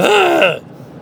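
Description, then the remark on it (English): A single drawn-out yawn, a breathy, wavering groan lasting about half a second before cutting off into quiet. “Now that I said that, now I'm going to fucking yawn.”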